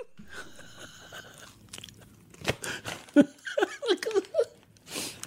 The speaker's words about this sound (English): I've never seen you laugh and eat at the same time. You're laughing and chewing at the same time. I'm crying and chewing.